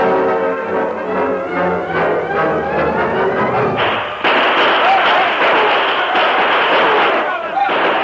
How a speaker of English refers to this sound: Guns blazed in northern Texas with the Lone Ranger fighting on the side of the law against the notorious Red River Gang.